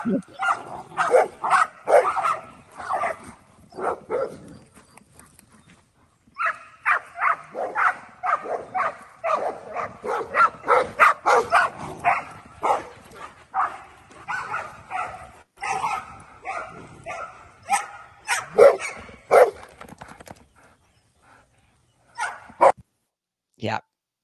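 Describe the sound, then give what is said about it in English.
Several dogs bark and yip excitedly on a morning walk in rapid, overlapping bursts, fairly loud, with a few whimpers mixed in before the noise tapers off into scattered yaps near the end. “So that's what my morning walks are like with the dogs.”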